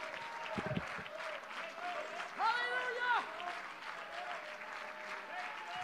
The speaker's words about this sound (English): And if you believe the Lord is going to help you, I want you to clap your hands to the Lord and give the Lord a shout of praise in this service tonight.